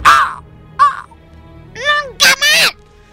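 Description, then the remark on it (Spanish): A raven caws several times, loudly: a harsh, raspy call, a short one, then a wavering croak followed by two quick rough caws. No one speaks. “¡Profeta, sí, seas pájaro o demonio!”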